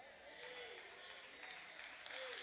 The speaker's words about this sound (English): Thank you for the claps.